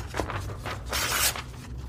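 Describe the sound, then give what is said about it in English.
Paper rustles and crinkles in a series of soft bursts, with a louder swish near the middle as sheets of paper are handed over. No one speaks. “You'll need paper then as well, won't you?”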